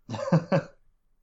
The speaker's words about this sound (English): God, yeah. See, man, that cough.